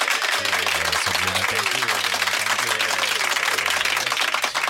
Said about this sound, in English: So just a round of applause. Just a general round of applause.